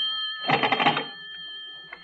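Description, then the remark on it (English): A telephone rings once in a short, rattling burst over a steady high-pitched electrical tone, then the tone lingers alone as the ring stops. The ring is moderately loud. “I better answer it. It might be the operator.”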